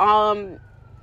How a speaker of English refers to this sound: I'm in my car, so you hear the, you know, police sirens, because of course.